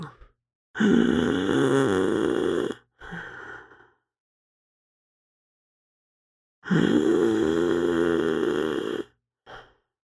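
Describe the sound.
A voice imitates the labored, rattling breathing of a dying person: two long, loud, harsh drawn-in breaths, each followed by a short, weaker gasp, separated by several seconds of silence.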